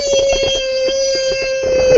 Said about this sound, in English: That's my ringtone.